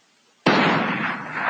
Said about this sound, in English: My tactical team leader notified me by radio that a gunshot had been heard coming from inside the bulldozer.